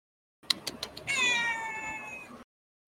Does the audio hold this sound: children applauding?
no